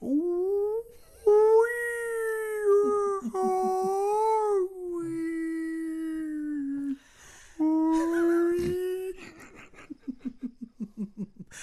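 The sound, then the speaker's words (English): A voice imitates a killer whale call with long, loud, high squealing tones that rise and waver in pitch, broken by a brief pause, then ends in a string of quick breathy pulses. “Killer whales say, they call me the killer whale because when I have an orgasm, I sound like.”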